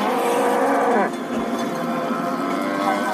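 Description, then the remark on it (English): A cow caught up in a tornado moos loudly, a long bellowing call with a drawn-out, wavering tone, set against a steady rushing wind-like background noise that continues after the moo ends. “Another cow.”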